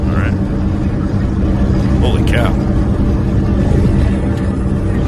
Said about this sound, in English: This is bad. Motorcycle. There's five of them going.